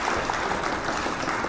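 A short burst of steady crowd applause sound effect, played to greet a friend arriving, dense overlapping claps forming a continuous bright wash at an even, fairly loud level with no voices over it.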